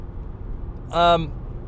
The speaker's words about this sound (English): I'm driving home from work